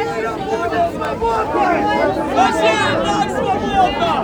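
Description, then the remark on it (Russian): Dense crowd hubbub of an outdoor rally, many voices overlapping into a steady, loud murmur that swells and erupts after slogans are called, with occasional raised shouts surfacing from the mass, continuous throughout. “Гул нарастает и взрывается после лозунгов.”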